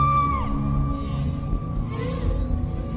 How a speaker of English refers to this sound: One interesting fact about whales is that male humpback whales found in U.S. waters can sing complex songs in winter breeding areas near Hawaii and the Caribbean and elsewhere, and these songs can last up to 20 minutes and be heard from miles away.